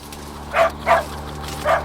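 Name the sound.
dog barking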